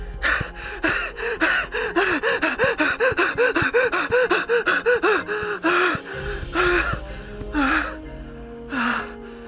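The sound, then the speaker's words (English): A man, exhausted from running through woods at night, breathes in rapid, ragged gasps with a thin wheezy whistle, coming in a fast run before slowing into a few heavier, drawn-out gasps. “Thank God, he wheezed.”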